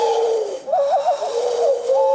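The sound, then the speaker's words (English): A man imitates an owl's hoot by blowing through his cupped hands, sealed with no air holes: one steady, hollow tone that wavers into a quick trill midway, then steadies again. Fairly loud, with no talking. “Well, I actually can do owl.”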